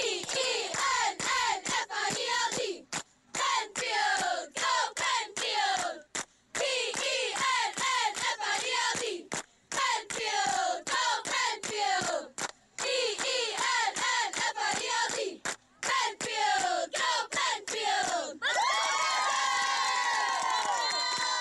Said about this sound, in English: Here at Coldwater High School, it's Friday Night Lights with Your Country, Wind98.5. I'm on the other side of the field with the beautiful Penfield Panther cheerleading team. You ready, girls? Come on, give us a cheer.